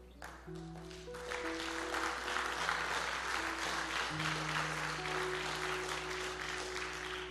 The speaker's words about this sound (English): Come on, let's give him a great round of applause today.